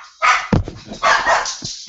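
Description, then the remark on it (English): Dogs bark in a quick series of sharp, loud yaps, several overlapping bursts, with no talking in between. “Apparently the dogs want to go to bed too.”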